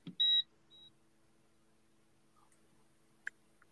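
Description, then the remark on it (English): A short, bright electronic beep sounds once from something behind the speaker, followed by a fainter, briefer chirp, then a quiet hum with a couple of faint clicks. No one speaks. “Something behind me beeped and I'm a little scared.”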